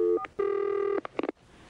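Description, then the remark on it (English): A telephone number being dialed to place a prank call: a couple of quick electronic beeps, a steady held tone lasting about half a second, then a fast burst of short keypad tones. No one speaks. “We're going to call up Tara Rod.”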